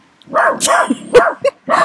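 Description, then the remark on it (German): A dog named Lucy barks loudly at walkers passing by, in a quick, uneven burst of about five sharp barks, a couple of them higher and yelping, with short gaps between them and no one talking. “Ja, so kann das kommen, wenn die Spaziergänger vorbeigehen.”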